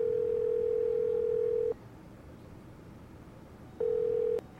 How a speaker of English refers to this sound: Well, maybe we ought to call my sister and see if she learned anything from this last phone call. Doing that right now.